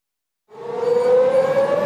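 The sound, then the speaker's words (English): A Wan'an civil defense air raid drill siren in Taiwan starts after a short silence and holds a loud, steady wail, its pitch creeping slowly upward, with no voices present. “This sound is the familiar Wan'an drill siren.”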